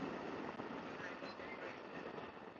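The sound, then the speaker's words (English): A train rumbles past, a loud, steady roar of wheels and engine filling the whole stretch without letting up, with no one speaking over it. “Pardon me, let the train go past.”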